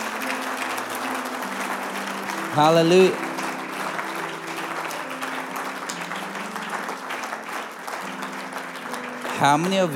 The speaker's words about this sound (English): Come on, let's give God a big clap offering tonight.